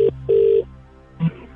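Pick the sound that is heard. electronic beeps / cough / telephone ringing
telephone ringing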